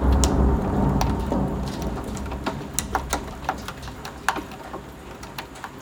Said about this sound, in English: Basically, it's been raining the entire day and thundering all day long. It's just bizarre. There was one point in the afternoon where there were claps of thunder and it was brilliant sunshine. I've never seen anything like it.